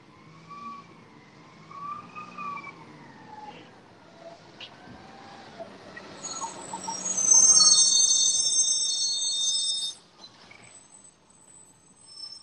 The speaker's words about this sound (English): And then there's garbage truck. It's going to keep being loud. Maybe like it's really loud there.